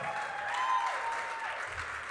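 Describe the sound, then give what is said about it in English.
An audience at a church service applauds steadily, a dense wash of many hands clapping at once, sustained at an even level for a couple of seconds without any talking. “You better clap for your brother.”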